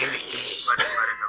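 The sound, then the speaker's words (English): A person imitates the hiss of the Sleestaks from Land of the Lost: a loud, breathy, high-pitched hissing held for over a second, with a brief catch in the middle before the hiss resumes. “And how they would sneak up on people and try to steal their treasure and make that hissing sound.”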